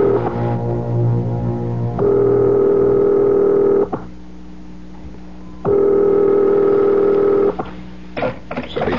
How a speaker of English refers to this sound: Dial. I'll call his private number.